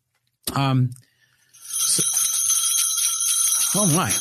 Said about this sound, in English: It is Christmas time, and it appears that the bells are jingling, the halls are decked, and I think we have a guest arriving in the podcast studio.